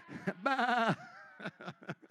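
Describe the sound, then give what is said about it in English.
A church audience bleats like sheep and goats, making the noise of what they want to be, with one long wavering "baa" standing out, followed by several shorter overlapping bleats from different voices, loud. “To remain as a goat under just condemnation or to put your faith and hope in Jesus Christ and be a sheep?”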